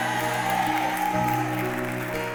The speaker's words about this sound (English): Come on, clap hands for Jesus. You will be regenerated in this revival.